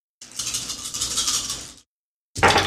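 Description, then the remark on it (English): A handful of nine dice, rolled for damage in a game, rattles and clatters in a continuous bright burst for over a second, then after a short silence a second, louder clatter begins. No one speaks. “Roll 9 dice for damage.”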